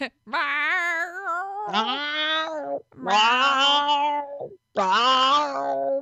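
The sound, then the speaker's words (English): A male cat lets out a string of long, drawn-out yowling meows, about four in a row with brief pauses between, loud, wavering up and down almost like singing. “My cats all have different meows.”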